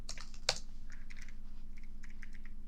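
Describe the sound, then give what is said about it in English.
Rapid clicky keystrokes from a mechanical keyboard, with one sharp louder clack near the start followed by a steady patter of lighter taps over a low background hum. “Sorry if my mechanical keyboard's loud.”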